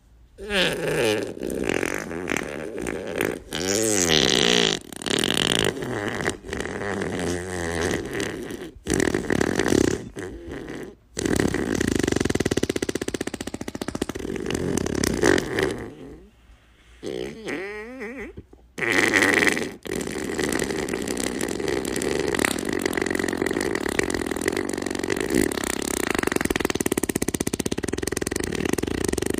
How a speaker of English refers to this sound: You know, I've been eating a lot of beans lately. But I wonder if I could go for a 30-second fart here.